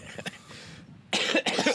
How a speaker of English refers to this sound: I've been coughing all over you, so yeah, spreading that fever.